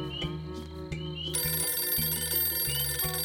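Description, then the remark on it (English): A telephone bell starts ringing partway through on a houseboat at night and keeps going, a loud, continuous metallic jangle layered over low, steady repeating tones, with no one speaking. “A phone rings while a river nymph, in the form of the blonde girl from the beach, floats through the houseboat, draped with hyacinth blossoms.”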